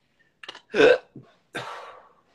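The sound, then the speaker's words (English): A sharp hiccup jolts out between a couple of smaller catches in the throat, followed by a breathy rush of air as the person exhales. “And you, whenever you get a release, you always have a hiccup.”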